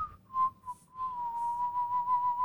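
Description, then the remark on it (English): A person whistles a single steady, sustained note for a couple of seconds, with a brief break at the start, low background rumble and faint breathy hiss, no talking. “Like, you're not supposed to whistle because it, yeah, see?”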